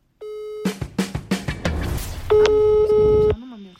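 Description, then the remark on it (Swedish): Phone call tones over the line: a steady tone, then a quick run of short pulsing beeps, and finally a longer sustained tone, fairly loud, with no one picking up. “Varför är det ingen som svarar när vi ringer?”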